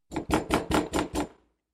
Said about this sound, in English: I hesitated. 1 minute had passed, and once more, the sound of knocking filled my ears.